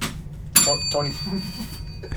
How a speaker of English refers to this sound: Who rang the bell first?